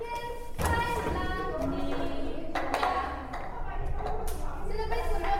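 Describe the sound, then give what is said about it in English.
Sharp claps, knocks on a table and cups being flipped over as elderly Alzheimer's patients play a brain training game, landing in an uneven series of taps and thuds every second or so, over steady background voices. “In this game, the elderly need to accomplish their tasks in three steps: clap their hands, knock on the table, and turn over the cups in front of them.”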